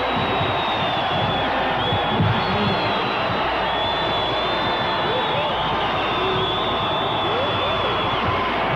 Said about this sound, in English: And there is the buzzer ending the first half of play. Listen to the crowd.